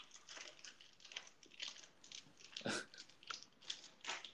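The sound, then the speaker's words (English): Crunchy chewing of a snack called a hockey stick, a steady series of crisp bites and crackling crunches about every half second, loud with no talking. “I was just trying to eat a hockey stick, but I realized the chewing would record.”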